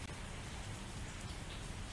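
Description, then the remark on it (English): Steady rain falling, a dense continuous hiss of drops spread evenly with a low rumbling wash beneath, with no voices. “And it's rainy where you are? Sure.”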